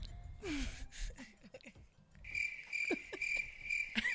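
A cricket chirps in quick high-pitched bursts, then settles into a steady, continuous trill that carries to the end, with faint voice sounds murmuring underneath.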